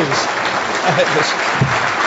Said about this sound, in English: He really deserves our credit, and I just want one more round of applause.